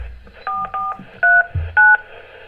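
Five short touch-tone keypad beeps, each a steady dual-pitched tone, pressed in quick uneven succession over a faint background hum.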